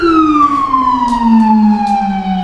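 A police car siren sounds loud in one long, slowly falling wail as the police pull up to a corner, with a steady rumble of road noise beneath it and no voices.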